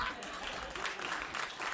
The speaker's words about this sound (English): I love the reluctant rounds of applause that the people in the audience are getting just for having their names read out.